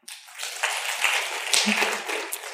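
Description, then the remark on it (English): An audience breaks into a burst of scattered applause, clapping once for Google as the tech company they trust most, many hands clapping at once in a dense, crackling wash that holds steady for a couple of seconds with no speech over it. “So if you think that you trust Google the most, clap now.”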